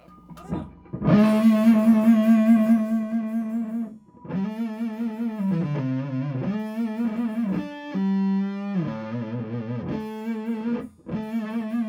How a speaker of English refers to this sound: The only thing I've got is that funny sound of your amp buzzing my acoustic guitar.